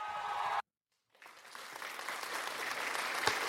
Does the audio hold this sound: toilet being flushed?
no